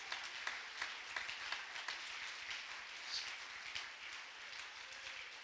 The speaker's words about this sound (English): I want you to jump your feet and clap your hands.